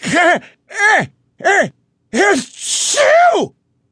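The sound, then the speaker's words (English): A voice acts out a loud sneeze: four short, rising-and-falling gasping "ah" sounds build up, then burst into a longer, breathy, explosive "choo", with no other talking. “Like a shotgun full of snot, Liberty blasted.”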